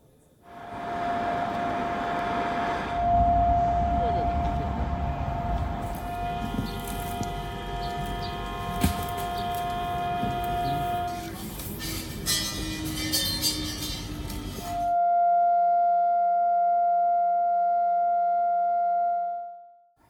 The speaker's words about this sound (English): As Chinese lawmakers stood in silence, sirens wailed out across the rest of China to remind people about the ceremony. Residential areas, flyovers, metro stations, restaurants, the sirens could be heard everywhere.